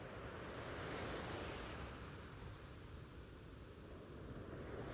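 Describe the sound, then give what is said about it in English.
Ocean waves wash steadily onto a beach, a full, continuous surf roar with gentle swells in loudness and no voices throughout. “But for now, just continue to walk along the beach and let the sound of the ocean waves wash over you, calming your mind and body.”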